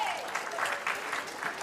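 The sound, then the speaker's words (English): Steady applause from an audience clapping for a volunteer as he comes up, a dense patter of many hands clapping at an even level for a couple of seconds. “Let's give him a clap.”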